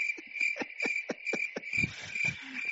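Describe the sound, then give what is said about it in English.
A steady, high-pitched cricket chirping fills the background, joined by a string of soft rhythmic clicks and thuds, like a nighttime insect chorus played as a comic silence effect. “Crickets.”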